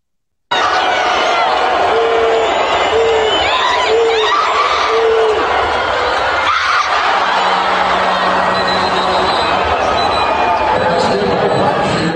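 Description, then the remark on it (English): A packed basketball arena roars continuously with cheering and shouting during a buzzer-beater, punctuated by a sharp thud midway, followed by a steady, low buzzer tone sounding beneath the sustained crowd noise. “you got that video? The buzzer beater?”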